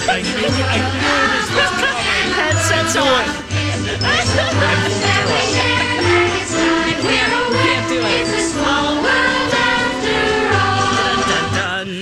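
A cheerful, bouncy song from a Disney World theme park ride plays loudly and steadily, with a bright tinkling melody over a regular pulsing bass line and no pause throughout.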